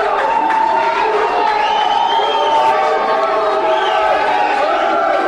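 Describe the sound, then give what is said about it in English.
A large crowd waiting outside cheers and shouts continuously as a man walks out to them, a dense roar of many voices with high whoops rising and falling, loud throughout. “You hear the crowd while he's coming out?”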